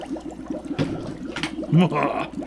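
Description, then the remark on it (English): Liquid, a secret ingredient for a homemade Ecto Cooler drink, pours into a container, a steady splashing trickle lasting a couple of seconds, with a few brief louder gurgles partway through. “And we'll just pour it in there.”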